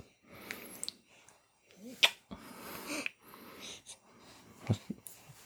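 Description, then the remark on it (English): A baby hiccups a few times, each one a short, sharp little burst, with soft breathy and snuffling sounds in between. “You're starting to get the hiccups, are you?”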